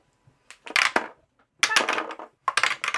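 dice being rolled

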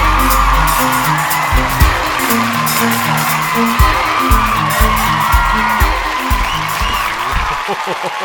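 crowd cheering and whooping

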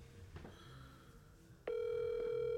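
phone call ringing

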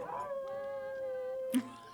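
dog howling

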